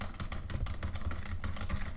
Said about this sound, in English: What the hell is that? That's definitely that was muffled on my end. It was me typing. Sound. Oh, it sounded like you were shaking your chair. Ah, I was typing pretty quick and nonsense.